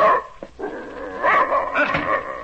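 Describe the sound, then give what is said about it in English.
A German shepherd dog named Savage, which came out of the army, barks and whines, a few loud, rough, tonal yelps running together in quick succession with no one speaking. “German shepherd dog, that's what he is.”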